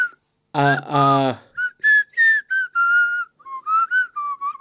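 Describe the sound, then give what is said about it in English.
A short voiced sound, then a person whistles a simple tune: a string of clear, sustained notes that rise and fall, with brief pauses between phrases. “I can't whistle out.”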